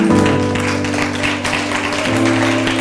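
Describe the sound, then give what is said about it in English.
An audience claps steadily for God at the end of a church service, a dense continuous patter of many hands, over a sustained low keyboard chord that shifts once near the end. “Well, before, amen, you give God a hand clap.”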